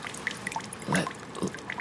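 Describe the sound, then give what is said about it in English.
Wet liquid sounds trickle and drip, with scattered small splashes and a fuller pouring burst midway, quiet and irregular with no talking. “It's really dripping fluid now.”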